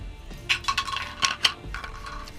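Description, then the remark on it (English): Purple dice clatter across a hard tabletop in a quick burst of small, sharp clicks and rattles, fairly quiet, settling after about a second with no voices. “And we're going to not roll that dice again. We're going to go with the purple dice.”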